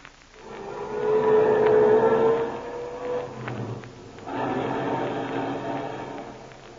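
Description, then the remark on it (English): A car engine starts up and roars as the vehicle pulls away, heading to the Skelly service station, a steady whining hum that dips briefly midway, then surges again and keeps running. No one speaks. “Come on, car. We're dashing right over to the Skelly service station.”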